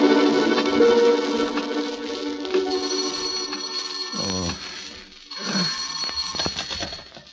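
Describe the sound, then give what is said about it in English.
An old-fashioned telephone bell rings loudly and steadily for several seconds in a prison warden's office, a bright metallic jangle with a brief dip near the end before it resumes. No one speaks. “You'd better phone the warden to make sure, though, Governor.”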